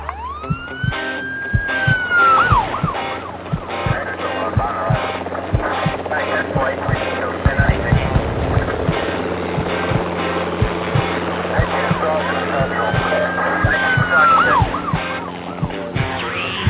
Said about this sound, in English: Doesn't that just get your adrenaline like pumping? You hear the ambulance, the sirens, the helicopters, the heart racing beating, and all of a sudden you're there, ready to do something.